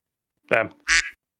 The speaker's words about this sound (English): It's like, when there's a duck sound, when there's a stock duck sound. Yeah, stock duck sound.